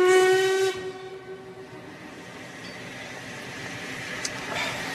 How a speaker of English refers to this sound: Weren't we supposed to get that train? Was that the London train?